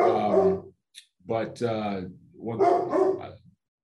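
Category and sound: animal, dog barking and growling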